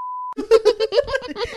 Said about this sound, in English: I'll blur it. I'll bleep it.